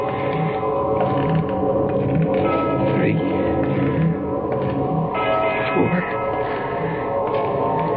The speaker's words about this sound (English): And then way off in the distance, I heard the deep-throated bongs of a church bell striking the hour. I stopped running. I waited. I counted.